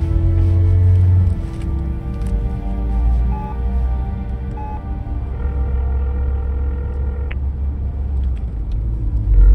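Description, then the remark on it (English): A car engine drones steadily as the car is started in the dark and driven out onto the road, a deep continuous rumble with a humming tone that dips slightly after the first second, with no voices. “I start the engine and tear out onto the road, wanting miles between me and that cave.”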